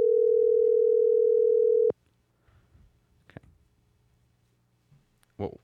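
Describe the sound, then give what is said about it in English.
A steady electronic telephone ringback tone from a phone call to Alabama played on speaker sounds for about two seconds, loud and continuous, then cuts off abruptly, followed by a few soft clicks and faint voices in the background. “It's ringing, guys.”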